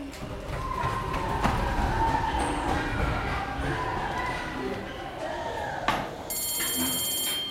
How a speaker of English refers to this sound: The ringing of bells across playgrounds, that shuffle of shoes down corridors, and chalk scraping across blackboards. These are the sounds of school heard the world over.